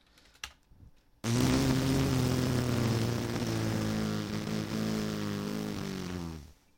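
A nose blow played back slowed down: one sudden, loud, deep droning honk that stretches for about five seconds, its pitch sagging slightly before it cuts off, preceded by a few faint clicks.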